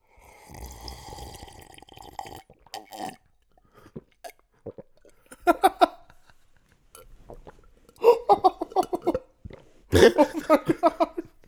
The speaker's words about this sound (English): Man. I just downed a very large glass of water. Hold on, I gotta finish it off.